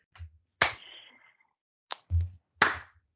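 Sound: hand clap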